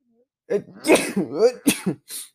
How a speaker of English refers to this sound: I need to sneeze.